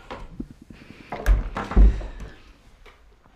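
A door swings shut with a solid wooden thunk, followed quickly by a second heavy thud, then quiet room noise. No one speaks.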